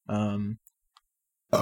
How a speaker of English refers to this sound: Another burp. Folks, this might be the burp.